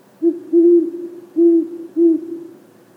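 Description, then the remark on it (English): A series of four low, mellow owl hoots at uneven intervals, the second one longer and drawn out, with a faint hum beneath and no talking. “Anyway, young male owls start practicing their hooting call at an early age.”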